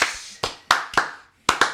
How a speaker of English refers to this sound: Can we get a slow clap, please?